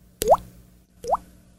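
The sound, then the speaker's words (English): Two crisp water-drop plops, each a sharp click followed by a rising hollow bloop, spaced under a second apart, clear with no talking. A person imitating dripping water by clicking a finger against the side of the mouth. “You click your finger against the side of your mouth and you make a...”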